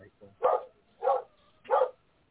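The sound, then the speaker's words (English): A dog barks three times in a steady, evenly spaced rhythm, each bark short and full-bodied, heard at moderate volume; it is a neighbor's dog barking outside a window. “Yeah, there's a dog barking outside my window here.”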